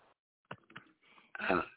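A little cough: a couple of short, soft throaty bursts followed by a louder, rougher hack near the end, with no talking.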